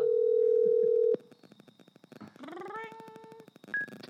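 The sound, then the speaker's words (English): A single steady electronic ring tone plays on an outgoing phone call to a producer of the show Dopey for about a second, loud and clear, then the line goes quiet apart from faint crackle and a brief rising, voice-like sound. “Here we go. Ring. Ring.”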